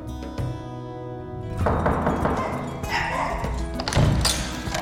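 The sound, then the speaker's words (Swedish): One of Lulu's two dogs, at the home of the Äntligen hemma interior designer, barks at new arrivals, loud and repeated, in a busy burst of sound that also carries muffled thumps and a steady tonal hum at the start. “Hej, nu blir du utskälld.”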